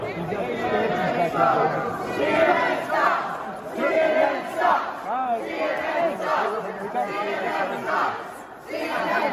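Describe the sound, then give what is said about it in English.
A loud crowd jeers and shouts continuously at reporter Jim Acosta, confronting him over the Cuomo scandal at CPAC, many voices overlapping in rising and falling yells with no clear words, staying dense and agitated throughout. “one of my favorite moments of the last week was Jim Acosta getting shit on by the crowd and confronted over the Cuomo scandal.”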